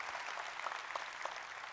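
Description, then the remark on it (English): A large audience applauds in one big clap welcoming its campuses: South Tampa, Temple Terrace, Waters Avenue, Ybor City, Hernando County Women's Correctional Institute and Van Dyke; a steady dense wash of many hands clapping with no voices over it. “We'll do one big clap at South Tampa and Temple Terrace and Waters Avenue and Ybor City and Hernando County Women's Correctional Institute and the Van Dyke campus.”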